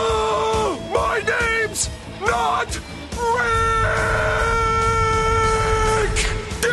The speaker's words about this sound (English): SpongeBob sits on Patrick's chest this time and screams